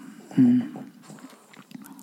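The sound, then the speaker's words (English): A sleeping dog lets out a single short, low grunting snort, followed by faint soft breathing and small rustles. “Yeah, and you still hear my dog sleeping in the background.”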